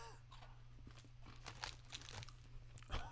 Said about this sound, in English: All right, everybody. Here we are. Kit Kat drumstick. Kit Kat drumstick. Cheers. Cheers. Just crunch right into the microphone.